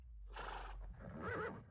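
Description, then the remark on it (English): A horse neighs loudly, a brief breathy burst rising into a wavering whinny that lasts under two seconds, with a low rumble underneath and no one speaking. “Was she just sleeping with a horse?”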